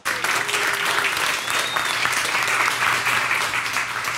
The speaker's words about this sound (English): Let's give a big round of applause now for Jennifer Granick.